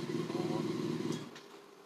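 A 919 motorcycle's engine idles with a steady, throaty rumble as it is being parked behind a car, then its sound drops away abruptly partway through, leaving quieter background noise.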